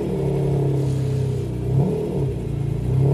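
A car engine revs steadily as the car is readied to be driven up into a trailer, its low rumbling tone rising and falling in pitch as the throttle is worked, loud and continuous with no talking.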